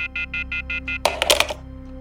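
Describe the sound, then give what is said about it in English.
The boss's telephone rings in a quick series of six even electronic chirps, clear, then stops abruptly as a brief clatter follows, like the handset being picked up. “Oh, it's the phone. Wait, it's the boss's phone.”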